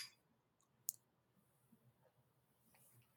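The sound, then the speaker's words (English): A single quick clink of small shot glasses knocking together in a toast for a third shot, short and bright against a faint low background hum and a few soft rustles. “But before we get into it, we do need to do our third shot. Our favorite Cheers. Shot. Cheers.”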